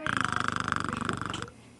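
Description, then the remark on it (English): A person imitates a cat with a loud, rapid rattling purr-like trill that holds steady for about a second and a half, then cuts off abruptly. “Hey, I can do a cat. Listen to this.”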